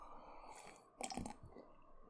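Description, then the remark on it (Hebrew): A quiet mouth sound: a brief slurping sip of tea followed by a soft swallow, with no talking, set against low background hiss. “ואני כן אקח, ואני בהחלט אקח עוד שלוק מעטה, כי בולע לבן אדם לבלוע.”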